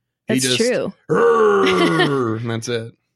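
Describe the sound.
A person growls out a deep, gravelly roar in imitation of the Pokémon Onix, a rock monster, starting with a short burst, then a long rumbling yell that wavers and trails off.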